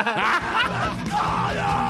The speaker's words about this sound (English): Play his jingle.